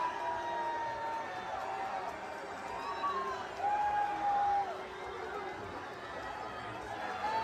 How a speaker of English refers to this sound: So it sounds like he's getting booed, and then there's one chick right in the front who's screaming, woo, to cancel out the boos. That's funny.